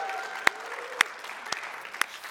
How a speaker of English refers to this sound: Hey, do you guys have a good Christmas? If you had a good Christmas, come on, just cheer, just for one moment.